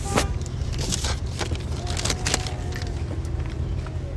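Wind roars steadily with a deep, buffeting rumble, broken by brief crackling gusts and scattered sharp clicks, continuous and fairly loud throughout with no one speaking.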